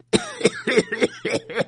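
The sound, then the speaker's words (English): A rapid run of about six short, harsh coughs, fairly loud, over a low steady hum in the background. “No, you don't have a cough.”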